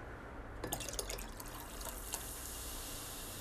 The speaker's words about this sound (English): Once you've successfully mixed your cherries and your vodka, you are going to want to add some cola to your pomegranate juice. Preferably this will be in the glass that you will be serving it in.